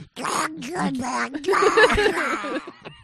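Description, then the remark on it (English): A person does a raspy, quacking duck-like voice, a fairly loud stream of buzzy nonsense syllables lasting a few seconds with brief pauses. “That sounded like a duck.”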